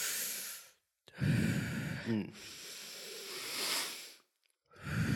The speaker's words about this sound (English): We do loads of breathing exercises.